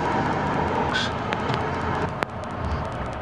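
A steady, loud roar of heavy vehicles rolling past on a road in Australia in the early morning: the back end of a police-escorted convoy transporting 75-metre wind turbine blades to the Rye Park wind farm. A continuous rumble with a brief sharp click partway through and no voices.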